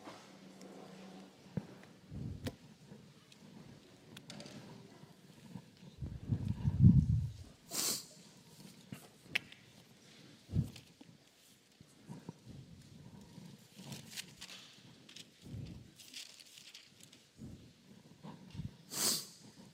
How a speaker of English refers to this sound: Got the sniffles today, so excuse me on those.